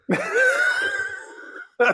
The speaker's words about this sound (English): I'm sorry. I've got a cough at the moment and I shouldn't laugh.